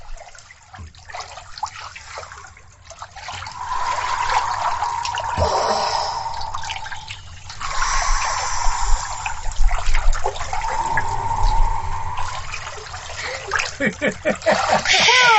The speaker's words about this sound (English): We're going to splash. Here we go. You're not going to hear us for a minute. Just going to be splashing. Here we go.